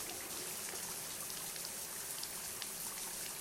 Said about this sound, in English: turn off the shower.